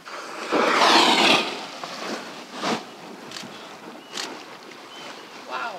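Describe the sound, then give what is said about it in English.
A humpback whale breaks the glassy surface of Glacier Bay in Glacier Bay National Park and Preserve for a huge mouthful of fish, a loud, rushing surge of spray lasting about a second, followed by a few softer splashes and sloshing water outdoors. “The reflection of Mount Wright ripples on the glassy water of Glacier Bay National Park and Preserve until a humpback breaks the surface for a huge mouthful of fish.”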